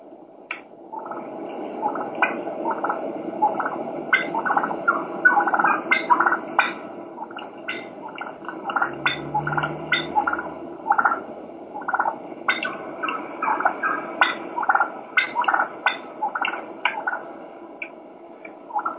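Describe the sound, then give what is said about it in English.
A wild turkey hen purrs with a soft, rolling trill while sharp clucks pop out irregularly over it, steady for the whole stretch with no voices. “This is a hen just clucking and purring.”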